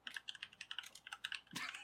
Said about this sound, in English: So immediately starts typing.